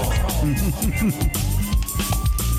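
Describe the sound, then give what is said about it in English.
A siren sound effect wails with a slow rising pitch sweep, playing at moderate volume beneath overlapping voices talking and laughing. “We got a new element to Tits on Patrol. Yes. There's a siren.”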